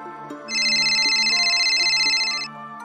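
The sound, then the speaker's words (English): A mobile phone rings with an incoming private call: a loud, rapidly warbling electronic trill that lasts about two seconds, sounding over a soft, sustained musical background with no one speaking. “But one night, Holly received a private call on her mobile phone.”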